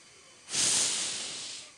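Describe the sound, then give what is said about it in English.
A single long breathy blow into a paper bag: a rushing hiss that swells quickly and then slowly fades, heard alone with no voices. “Here's a paper bag, and just blow into it.”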